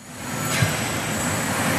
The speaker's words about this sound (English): This is constant. In Barcelona, loud cars clog the roads. This is what researcher Sasha Komenko calls noise.